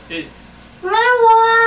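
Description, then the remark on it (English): After a brief squeak, a voice swoops upward into a long, sustained wail imitating the Doctor Who theme melody. It is loud and nasal, almost like a cat's meow. “Do you know the theme song? Da, dun, dun, dun, no, I actually know this one.”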